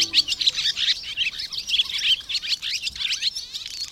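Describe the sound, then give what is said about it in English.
A barn swallow chatters in a rapid, continuous stream of high twittering and buzzy chirps, steady throughout, with no voices. “If so, the chattering of this swallow probably is not music to your ears.”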